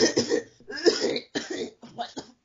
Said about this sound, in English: Ew. I ain't never heard those type of coughs just... And it just kept going.